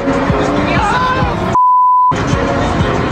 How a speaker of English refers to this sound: Video of two cars racing up Fraser Street at insane speeds and into oncoming traffic has sparked quite a response on social media.